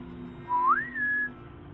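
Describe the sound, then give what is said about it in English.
A single clear whistle, starting low, sliding upward, then holding a steady higher note for a moment before stopping, heard alone over a faint low hum. “So I decided to whistle, right? And sure enough, whatever was out there on the other side of the gate whistled back.”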